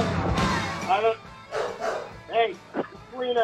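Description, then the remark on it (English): A dog barks excitedly in a quick series of sharp, yappy barks at irregular intervals, with muffled voices and room noise underneath. “My dog is very excited.”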